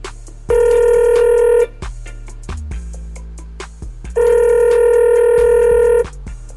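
Two loud ringback tones as a phone call is dialed to bring a guest on air, each about a second long with a pause between, and faint clicks and line noise in the gaps as the call connects.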